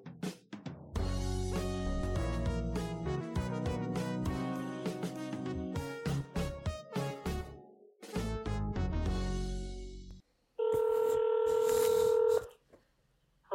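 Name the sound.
telephone dialing tones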